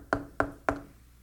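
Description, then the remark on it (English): Three firm knocks on a door, evenly spaced, each a sharp hollow rap with a short woody ring, followed by a brief quiet tail. “Imagine the Lord should knock today at your house this afternoon or this evening.”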